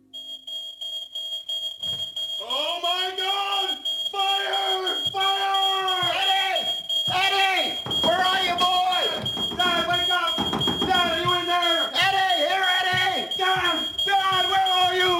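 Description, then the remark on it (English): A smoke alarm over a bed goes off as a false alarm, sounding a steady, piercing high-pitched tone throughout, while several people shout and talk over it in agitated, overlapping voices. “What's burning? Where is the fire? Eddie! All right! It's all right! False alarm! The one over my bed went off.”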